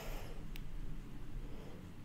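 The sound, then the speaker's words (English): Steady traffic in the middle of a street, heard during an interview, rumbles continuously in the background, a dense low drone with no clear voices, broken only by one brief sharp tick partway through. “You can hear, like, the traffic more than you can hear him.”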